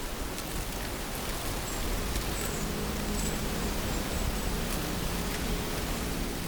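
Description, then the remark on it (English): Millions of orange and black butterflies rise from a grove of trees in the mountains of Mexico and take flight at once, a steady, dense rushing hiss like soft rain that swells slightly partway through and holds without any voices. “To really hear the sound of millions flying, we'll wait for what we call a waterfall.”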